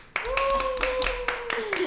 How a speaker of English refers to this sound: Everybody clap.